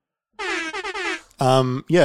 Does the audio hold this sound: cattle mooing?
no